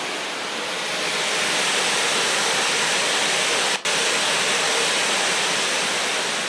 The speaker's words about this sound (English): Now what I'm going to do is I'm going to put two different pink noise sources. So this is a different pink noise generator going to each side.